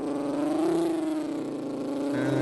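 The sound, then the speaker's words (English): A voice imitates a car driving, a steady close-up hum with a rolling, throaty texture and a slight pitch rise and dip, sustained for a couple of seconds without words. “Car drive.”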